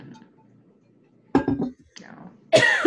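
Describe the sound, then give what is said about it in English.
A few abrupt coughs from someone whose throat is dried out from talking too much break a quiet moment, one short rough burst followed after a brief pause by a louder, harsher cough at the end. “I know the joke is everyone with a cough.”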